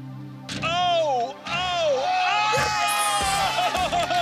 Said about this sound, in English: By making her think she sank those blindfolded shots, and by cheering and giving her positive reinforcement, it's almost like we hacked her self-confidence and got her to believe more in her natural abilities.